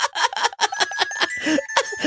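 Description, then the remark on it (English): Bells shaken hard and fast by a girl in an Amazon ad seen on Twitter, a loud, continuous jangling with rapid rhythmic bursts and ringing overtones, with no voices. “Ryan told me about, he's like, dude, this Amazon ad I keep seeing on Twitter, like, it's this girl shaking these bells aggressively, and she is fucking, it's like she's boxing.”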